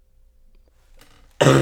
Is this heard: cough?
yes